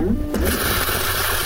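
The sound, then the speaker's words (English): A washer nozzle bursts into a steady, hissing spray of water against a towel laid over it, starting abruptly after a low mechanical hum and continuing evenly. “Now it's going to spray.”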